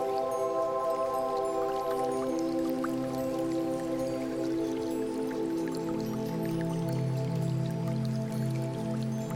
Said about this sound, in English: As you continue to walk, you hear the sound of a gentle stream in the distance. You keep walking towards where the sound comes from, and you arrive at a small creek surrounded by different rocks with green mosses.